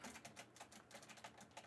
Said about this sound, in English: No, I'm just thinking about how you can hear my keyboard while gaming. It's the sad truth.